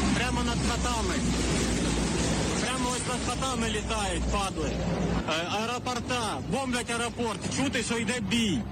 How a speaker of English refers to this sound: The sound of a Russian fighter jet screaming over a residential area of Ukraine, dropping ordnance and terrifying the family recording the scene.